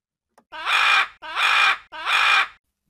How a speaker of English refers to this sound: What kind of bird do you think that was? It was a parrot. Parrots have very colorful wings and big beaks.